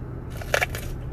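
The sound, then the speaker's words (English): A crisp, crunchy bite into raw green pepper: one sharp crunch followed by a few quick, crackly chews, brief and fairly loud over a low steady hum. “I love green peppers, man. Just raw.”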